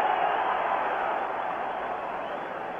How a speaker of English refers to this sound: You can just feel the tension oozing out of this crowd now, and I imagine you at home feel the same way. Crowd cheering on every pitch.